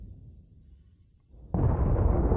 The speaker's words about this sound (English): The artillery was answered with thunderous replies from the other side. Chunks of earth hurled through the air with each explosion, sending dirt and rock upon the helmets of those who sat in the trembling ground awaiting their orders.